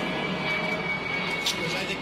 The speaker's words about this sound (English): Fly an airplane over. Muffle this shit.